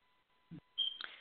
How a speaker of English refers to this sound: That's what, and I hear that beep, we got to change that. We're going to talk about that in a minute.